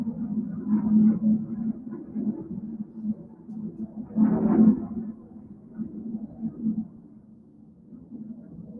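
An airplane drones overhead, a low steady rumble that swells briefly halfway through, then settles back to a softer hum. No one speaks.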